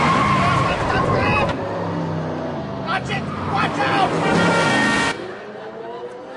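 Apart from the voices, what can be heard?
car speeding and skidding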